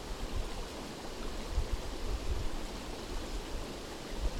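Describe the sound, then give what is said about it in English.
Water from a flowing stream makes a steady, continuous rushing hiss, moderately loud, with no voices or other sounds. “Am I separate from this water?”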